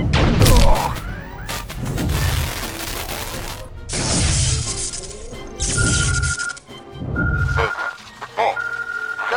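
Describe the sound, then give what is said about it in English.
Loud sci-fi Borg weapons fire slams into a starship: a run of heavy booming blasts and crashing, rumbling impacts, followed by a repeating electronic alarm tone pulsing through the noise. “Evasive! Can't dodge! Brace for impact!”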